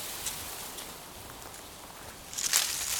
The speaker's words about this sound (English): Oh, what was that? That rustling sounds like something moving in the leaves on the ground. Oh, I can see a snake slithering off deeper into the bush. It's slithering pretty fast.